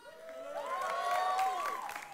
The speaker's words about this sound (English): pitiful cheering, man.